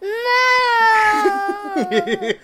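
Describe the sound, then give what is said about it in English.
A young child's voice imitates a cow's moo: one long, loud, drawn-out tone that sags slightly in pitch, then breaks into a few wobbly, bouncing syllables. “How about what sound does a cow make?”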